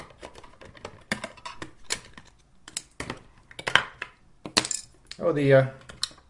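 Irregular metallic clicks, taps and clunks of a screwdriver knocking against a device's casing as it is taken apart at the screw holes on the bottom, with a brief rasping, rattling scrape near the end; no one talks over it.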